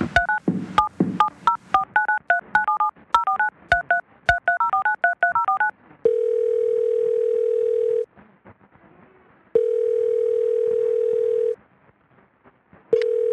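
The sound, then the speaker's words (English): A rapid string of touch-tone keypad beeps dials a grandmother's phone number, typed into a phone, followed by a steady phone tone that sounds in long two-second bursts with short pauses between them. No one speaks. “You look up the number, you put it in this phone, you type it in here.”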